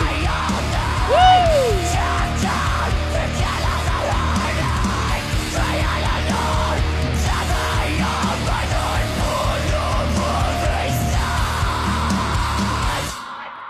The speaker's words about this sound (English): They teased the big break, the big heavy bit early on with the really faded screams.